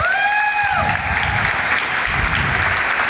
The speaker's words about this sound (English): You can clap for them. They did a great job.